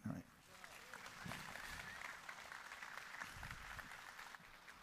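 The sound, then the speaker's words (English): An audience applauds the speakers steadily for several seconds after a discussion, a dense, even wash of many hands clapping that stays loud and sustained throughout, with faint crowd murmur underneath. “Big round of applause for those folks right there.”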